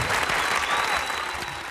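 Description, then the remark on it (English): A burst of applause from a crowd, a dense, steady crackle of many hands clapping at once, fairly loud and sustained throughout the short clip with no voices standing out. “You got a round of applause? That was loud.”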